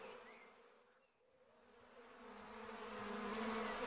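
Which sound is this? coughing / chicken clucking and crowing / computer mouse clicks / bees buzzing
bees buzzing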